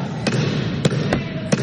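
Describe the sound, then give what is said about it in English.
Four sharp wooden knocks of a gavel striking at uneven intervals to call the House to order, loud, over a steady murmur of room noise. “Bang the gavel, yeah.”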